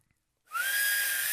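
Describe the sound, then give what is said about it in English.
A breathy, failed whistle: mostly rushing air with a faint thin tone inside it, blown steadily for about a second after a brief silence, sounding like a Hoover or Dyson vacuum cleaner. “I was gonna whistle right when we said, I'm ready.”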